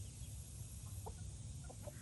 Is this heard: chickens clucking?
yes